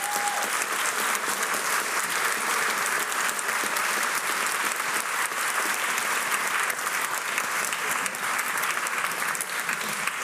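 A large audience claps steadily in a sustained round of applause, dense and even in loudness throughout, with no voices standing out.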